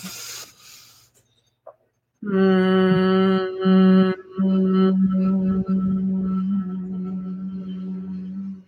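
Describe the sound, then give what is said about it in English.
A soft intake of breath, then a long, steady hum on one low note as a breathing-humming exercise, humming the breath out for as long as possible; it carries on for several seconds as the breath runs out, with a brief break partway through. “What we're going to do is take a breath in and then we're going to hum the breath out.”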